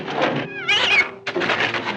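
A cat yowls in a drawn-out, wavering meow, loud, with a second burst of yowling right after, no talking.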